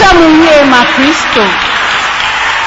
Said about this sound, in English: Please take your seat and clap for Jesus. I want you to clap for Jesus. I want you to clap well for Jesus.